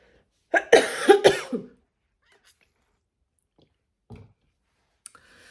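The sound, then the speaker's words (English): A quick cluster of three or four harsh coughs, followed by near silence, then a soft throat noise and a couple of faint clicks near the end. “Oh, I'm going to start coughing now.”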